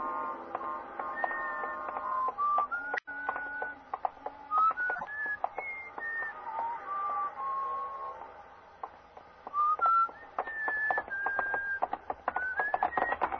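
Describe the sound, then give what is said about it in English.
Someone whistles a wandering melody of steady and sliding notes while walking along a street late at night, with sharp, regular clicking footsteps on pavement underneath. The whistling is moderately loud, with no talking. “I was on my day off and sort of late at night, and I was just walking along the street, not going anywhere in particular or even thinking anything much, just sort of whistling to myself and walking along the street.”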